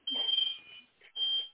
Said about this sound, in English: Shout out to the smoke alarm.